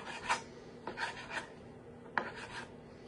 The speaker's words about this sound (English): All right, so I'm gonna put 4 sausage links in here. Just gonna cut these up. The pan is heating up. And I'm just gonna cut these in little pieces.